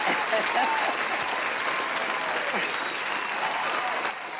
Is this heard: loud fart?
no